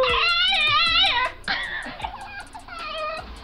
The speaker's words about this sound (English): But should we listen to this thing again? Now that we know this is a dog, to the best of your ability, before we hear from Lauren, like, what kind of dog do you imagine this is?